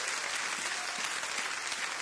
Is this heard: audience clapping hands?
yes